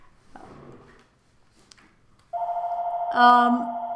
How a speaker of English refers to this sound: My phone just went off, that's great.